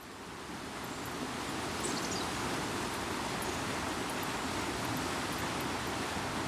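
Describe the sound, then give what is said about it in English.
Steady rushing water of the River Usk pours over rapids on a still early December morning, a dense continuous roar rising slightly in the first second then holding even with no voices. “And I'm watching the river just do its thing, flowing over the rapids.”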